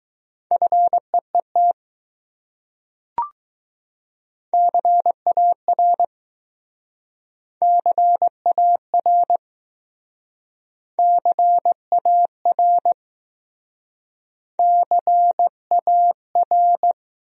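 Morse code at a moderate 15 words per minute, sending words from a list of the top 300 words: a steady mid-pitched tone keyed into dots and dashes, sent in five short word groups separated by silent gaps, with one brief click early on.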